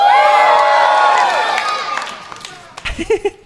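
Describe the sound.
A live audience cheers and whoops loudly for Star Trek, many high voices overlapping in a sustained roar that fades over a couple of seconds before a single voice starts talking.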